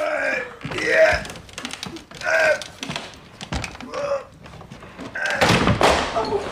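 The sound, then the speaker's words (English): A locked door is forced open with a series of heavy thuds, creaks and scraping strains, coming in uneven bursts until a final loud crack and rattle. “That ought to do the job. We'll have this door open in no time.”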